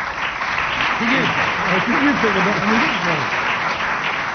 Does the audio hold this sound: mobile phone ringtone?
no